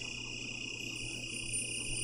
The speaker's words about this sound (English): More cricket. Oh. Yeah, it's beautiful. It is beautiful, but it's very mystical.